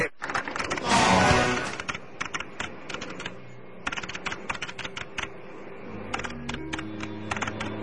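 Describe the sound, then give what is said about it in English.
Keyboard typing up an official report: quick, irregular key clicks patter steadily throughout, after a brief rushing burst of noise near the start, with a faint low hum underneath and no one talking. “Well, I see we're typing it up, and the official report will be published on Tuesday.”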